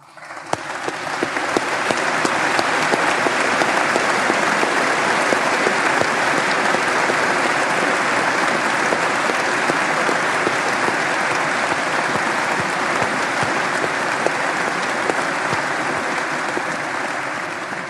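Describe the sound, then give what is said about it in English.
Sustained applause from a large audience at BYU welcoming 108 new faculty members, a dense wash of many hands clapping at a steady, loud level that swells in quickly and holds for the full length without voices. “Will you please stand so we can welcome you with warm applause?”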